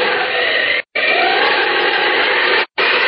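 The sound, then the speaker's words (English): A loud, steady roar of hurricane wind and driving rain, a dense hissing wash that cuts out abruptly twice for a split second before surging back, with no voices. “Oh, will this hurricane never blow out?”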